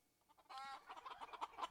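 chicken clucking

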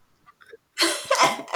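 coughing

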